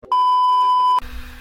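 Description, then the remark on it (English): A phone somewhere behind the speaker gives one steady, high electronic beep lasting nearly a second, fairly loud and clear, then cuts off abruptly into faint low rumbling. “And with that said, I don't know what's going on with this phone back here.”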